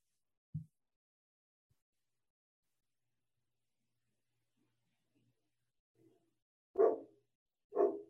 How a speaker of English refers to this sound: I'm trying to think if like dogs are barking. They are.